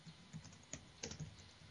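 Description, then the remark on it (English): Quiet clatter of computer keys being typed in a short, uneven burst of a few sharp clicks, with no voices present. “And while you're typing away,”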